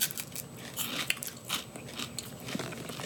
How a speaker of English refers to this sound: It tastes like... That's not a good crunch. I don't know what I'm crunching on.